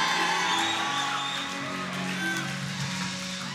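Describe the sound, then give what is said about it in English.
An audience cheers and shouts together, a dense, steady roar of many voices with scattered higher whoops rising out of it, loud and unbroken for a few seconds. “Come on and cheer about that. Shout about it.”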